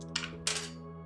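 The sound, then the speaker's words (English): Two quick bursts of hard, bright clattering as dice are rolled across a tabletop, the second louder and longer, over a faint steady hum. “Oh, God, he's rolling dice.”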